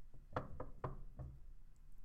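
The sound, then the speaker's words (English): Four quick knocks rap against a door in a short, slightly uneven sequence, clear, followed by a brief pause of quiet room tone. “We'll like kind of knock at the.”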